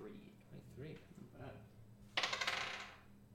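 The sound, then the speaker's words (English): Muffled talking gives way to a loud clatter of dice rolled across a table for an insight check in a tabletop role-playing game, a quick burst of rattling bounces that settles after about a second. “Go ahead and roll an insight check.”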